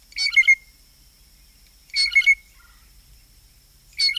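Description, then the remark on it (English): Three short bursts of blue jay piping notes repeat at a steady pace about two seconds apart, bright, over a faint low hum with no talking. “And as familiar as the typical call might be, these birds are immensely creative vocalists with a large vocabulary of other calls, including piping notes.”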